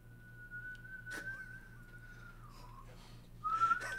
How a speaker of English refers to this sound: That's how I blow out candles through a whistle. Yeah. It's more entertaining.